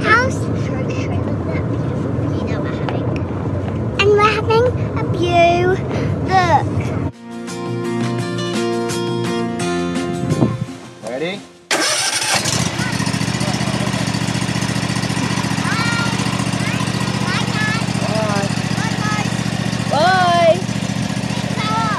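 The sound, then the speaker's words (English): A steady low engine rumble from inside a moving car, with voices chattering over it and a brief stretch of music-like tones midway before the road drone returns. “I'm just in the car driving to car keys.”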